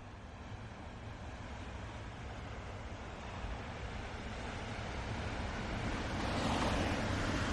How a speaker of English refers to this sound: Back on Earth, by the coast, in Barlavorg, at the very end of the Earth, the far north of Norway, the constant waves of the Barents Sea daily smash the seawall protecting the town.